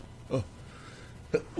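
Two short, stifled sneezes about a second apart, each a quick voiced burst at moderate volume with a quiet pause between them and no talking.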